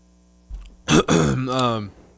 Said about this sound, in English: I'm about to cough again.